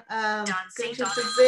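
A phone's electronic ringtone plays a short, bright melodic tune of shifting tones, fairly loud and close, with no one talking over it.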